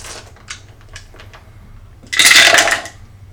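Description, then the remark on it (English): A few light clicks and taps, then a loud burst of hard clattering and rattling as dice are rolled across a table during a game, lasting under a second before stopping. “Pick up your dice and roll them.”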